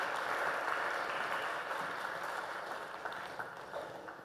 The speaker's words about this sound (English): Thank you very much. Let's give them a round of applause for helping me.